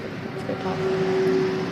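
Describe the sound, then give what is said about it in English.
A diesel truck rumbles past on a busy street, its engine a steady, fairly loud drone with a low hum that holds through the whole stretch amid broad traffic noise. “We're on a busy street. Diesel trucks just like to drive by.”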